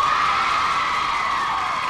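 The large studio audience of the Oprah Winfrey Show cheers and screams in a sustained, loud roar, picked up by crowd reaction microphones hidden in the chairs, the excited crowd noise continuous without any break or individual voices standing out.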